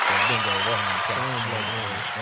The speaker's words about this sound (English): Give us some hand claps